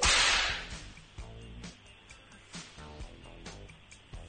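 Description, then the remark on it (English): A leather whip cracks sharply and loudly at the start, followed by several quieter snaps at irregular intervals over the next few seconds. “That is the best way to break in a whip. Use the whip.”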